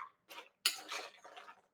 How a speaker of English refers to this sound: And I'm going to add my pecans to it. And I'm going to toss it. And you can see that this is covering the pecans.